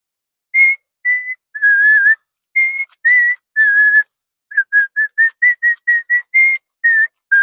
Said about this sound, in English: Can you whistle the words to Hot Cross Buns? How do you do that?